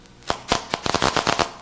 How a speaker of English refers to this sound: And that clicking you hear is the firing of a single brain cell, and it's completely silent in all of the arena apart from this location here.